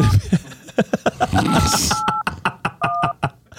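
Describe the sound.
Phone keypad tones dial a number: a few slow, steady dual-pitch beeps punctuated by sharp clicking presses, fairly loud, with someone speaking briefly at the start.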